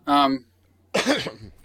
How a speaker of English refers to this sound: I have a cough. I'm so sorry.